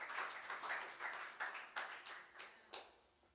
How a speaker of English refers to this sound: Give the Lord a praise of applause. Thank you, Lord Jesus.